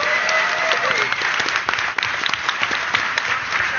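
A crowd gives one more round of applause for a daughter who is filming video with a camera, many hands clapping in a dense, continuous patter, with a brief whistle or cheer early on and a murmur of voices underneath.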